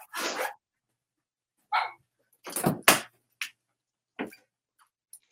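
A female dog barks in short, sharp bursts, about half a dozen yaps at irregular intervals with brief silences between, fairly loud, with no one talking.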